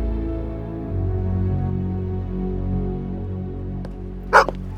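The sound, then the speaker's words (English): A steady, droning musical backdrop plays, then near the end a dog named Sandy, out on a walk, lets out two short, sharp barks that cut in loudly. “No barking on this walk, Sandy.”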